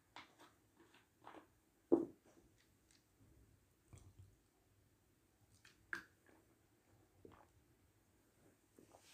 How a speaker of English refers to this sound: And then, let me just drink some water.